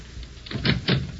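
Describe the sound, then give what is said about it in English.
A front door is handled and opened: two solid thumps of wood and latch in quick succession, moderately loud, with no voices. “Oh, the door. I'll get it.”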